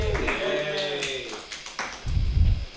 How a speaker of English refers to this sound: Everybody, clap your hands wildly for the very funny